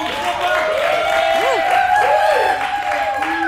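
A large crowd cheers and applauds steadily throughout, a loud, dense wash of clapping with rising and falling whoops and whistles mixed in, with no clear speech.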